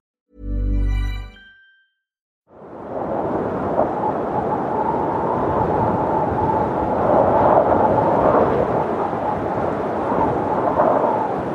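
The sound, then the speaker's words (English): A short harmonic tone fades out, then after a pause a loud, steady roar of wind sets in and keeps rushing and gusting without a break, with a faint howling edge running through it, as the wind howls around a small house on a wild, wet, windy day in the west of Ireland. “I don't know if you'd be able to hear the wind howling round my little house.”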